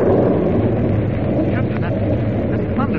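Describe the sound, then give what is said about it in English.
A deep, continuous rumble of thunder from a storm about to break rolls steadily and loudly throughout, with wind-like noise and faint voice-like sounds briefly surfacing beneath it. “Yeah, the storm is about to break.”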